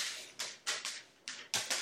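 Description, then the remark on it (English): A pet named Simone pacing: about six sharp, bright clicking steps land in an uneven rhythm, each fading quickly, with no voices over them. “That is Simone pacing because Scout riled her up.”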